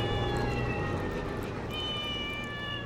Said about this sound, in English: It was the cats.